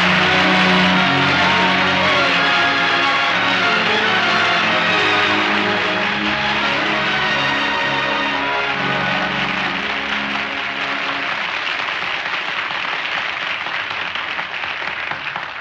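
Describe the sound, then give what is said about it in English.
Loud, sustained applause from a studio audience welcoming a clarinetist, with a band playing brassy music underneath the whole time, both tapering slightly toward the end. “So let's give a big welcome to ….”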